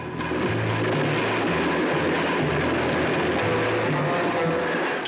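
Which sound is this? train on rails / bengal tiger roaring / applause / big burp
train on rails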